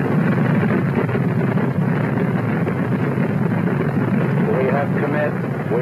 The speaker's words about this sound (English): The engines are on. 4, 3, 2, 1, 0.